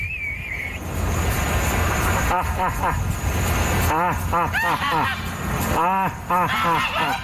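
Martha Stewart's peacocks call loudly in several quick bursts of short, honking, rising-and-falling cries, some overlapping, over a steady low rumble in the background, in a recording from her website, MarthaStewart.com.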